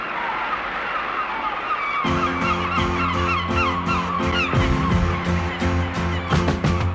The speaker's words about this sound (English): This is actually an alternative version, I think, you're playing, which has got the seagulls added to it. It's the same backing track, same vocal, I think, that actually came out as a single.